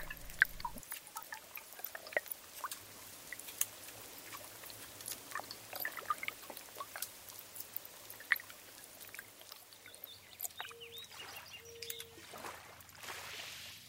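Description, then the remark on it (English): Flowing river water recorded underwater: a dense, steady wash of crackles, ticks and bubbling pops over a low murmur, with a couple of brief tonal whines near the end. “No river, in my experience, has an overall characteristic, you know, by which you could identify, that's the Danube, or that's the Hudson, or that's the Housatonic.”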